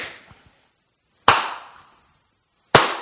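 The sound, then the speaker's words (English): Three sharp, loud hand claps ring out alone, spaced evenly about a second and a half apart, each with a quick bright snap and a short fading tail. “Okay, and now I'm going to do like three claps to like do the”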